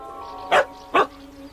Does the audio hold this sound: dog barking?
yes